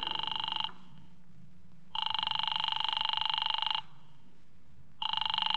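A telephone rings in long repeated bursts with pauses between, a bright buzzing ring over a low background hum, going on unanswered: a call to Diamond's office.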